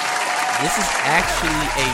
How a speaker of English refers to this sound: Now, I gotta give a round of applause to Donald Trump.